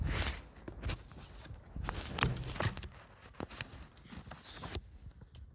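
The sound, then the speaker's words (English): Several footsteps crunch and tap across a hard floor at an uneven pace as people step in through a glass entrance door into a gallery space, over a steady background hiss. No one speaks. “We step in.”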